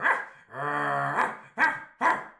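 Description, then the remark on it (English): A person imitates a dog while chasing a cat named Mr. Whiskers through a showroom: a loud, sharp bark, a drawn-out whining howl, then two more quick barks in a choppy rhythm. “My barking drew quite a few curious stares, but I ignored them.”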